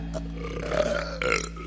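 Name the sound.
burp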